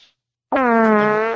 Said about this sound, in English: Shout out to the iFart app on iPhone. $1.99, and you guys can get all of these farts and more